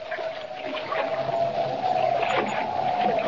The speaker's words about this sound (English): Boarding Jimmy's small catboat, Kent embarks on the short run to Lighthouse Point over choppy water and in a freshening wind.